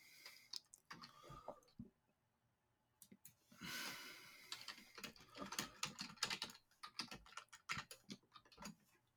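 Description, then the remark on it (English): Rapid, uneven clicks of typing a zip code on a computer keyboard into the Vote 411 website, fairly quiet, with a short pause before a denser burst of keystrokes. No one speaks. “And then type in zip code, hit submit.”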